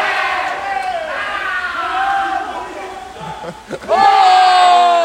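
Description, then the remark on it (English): A loud arena crowd cheers and yells continuously, a dense wall of many voices that dips briefly and then surges even louder toward the end. “Huge one from Botti. And he cheers the crowd on.”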